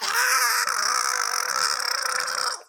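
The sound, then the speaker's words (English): A voice imitates a sustained, high-pitched scream lasting nearly three seconds, loud and strained, with a raspy gurgling texture in the throat before it cuts off abruptly. “That gurgle in your throat is terrifying.”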